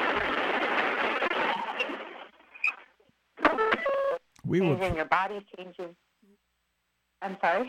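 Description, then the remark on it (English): A harsh burst of crackly, narrow-band phone-line static from interference on a remote call cuts out abruptly, followed by choppy, broken-up snatches of the caller's voice separated by brief dead silences as the connection is lost. “I think we were getting some interference there.”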